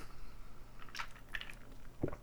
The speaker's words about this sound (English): The predominant flavor in this, let me take a sip and I can tell you.